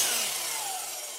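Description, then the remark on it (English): A saw in a shop buzzes steadily as it cuts through wood, a continuous bright, hissing whine with a faint falling tone, holding an even loudness for about a second with no voices. “So for now, the shop will stay open and the saw will keep buzzing until the very last one is assembled.”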